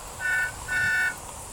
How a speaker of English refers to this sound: Tell her to honk her horn.